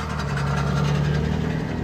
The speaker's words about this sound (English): Okay. There's a fucking loud-ass car right here in the side of us. I don't know if the mic's pretty good. It probably could catch it.